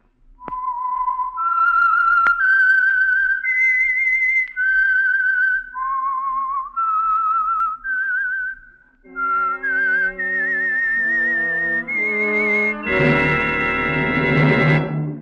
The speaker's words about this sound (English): And for Sunday evening listening pleasure, the signal to listen for is this whistle that identifies the Signal Oil Program, The Whistler.